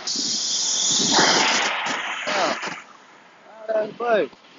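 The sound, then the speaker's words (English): A FlixBus rolls past with a loud, airy hiss of air brakes lasting a few seconds, engine rumble underneath, then fades as a couple of voices speak briefly. “Off-brand ass bus. Flix bus.”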